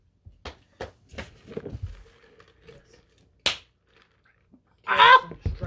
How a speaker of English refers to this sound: Why'd you slap my thigh like that? I will end you.